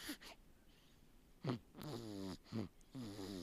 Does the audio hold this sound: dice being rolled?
no